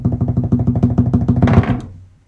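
Dice are rolled for an official prize drawing, rattling in a quick, steady series of hollow clicks, building to a brief louder clatter before settling and falling quiet. No one speaks.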